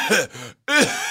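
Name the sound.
person imitating coughing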